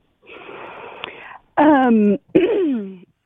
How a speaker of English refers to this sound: she's clearing her throat, she has something. She's got just a whole list. She's trying to figure out which one to say.